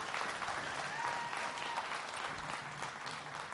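A church audience claps steadily for a few seconds to welcome a guest, a dense, even wash of many hands with no voices breaking through.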